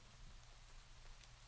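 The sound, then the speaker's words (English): Soft, steady rain patters on a glass window pane, a continuous hiss with a few brighter drop ticks standing out near the end. No voices, just the even wash of rainfall. “I challenge you to focus your attention on one, just one. Identify that raindrop.”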